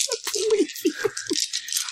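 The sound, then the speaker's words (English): A handful of ten dice rattles and clatters in quick bursts, then tumbles and settles across a surface, fairly loud with no one talking. “So what, is that 10 dice?”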